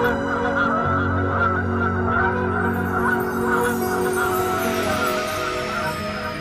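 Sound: flock of geese honking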